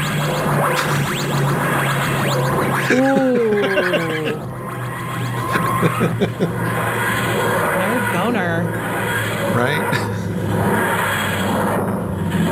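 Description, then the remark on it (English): A wavering, grinding sci-fi time machine materialisation wheeze, a game sound-pack replacement that turns the portals into time machines, rises and falls over a constant low mechanical hum, with people talking and reacting briefly over it. “There's one that when you're in Portal Core, changes all of the portals into TARDISes.”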